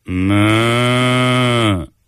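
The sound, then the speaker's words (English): A person imitates a cow with one long, loud, steady moo lasting nearly two seconds, a low droning voice that fades out at the end, with no other sounds around it. “Do your best moo impression.”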